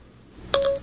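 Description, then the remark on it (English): A short, bright electronic chime of iPhone keypad tones as someone logs into the phone, a couple of quick overlapping beeps ringing out clearly for a fraction of a second over a quiet background. “Let me log into my iPhone here.”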